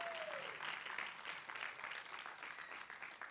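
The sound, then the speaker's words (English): Sustained applause from an audience, a dense, steady wash of many hands clapping at once, fairly loud and continuous for a few seconds with no talking over it. “Give her a hand clap, please.”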